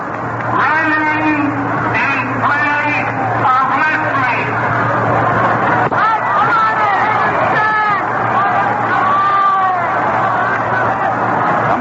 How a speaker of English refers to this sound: Yelling for Moore to park one in the stands out there.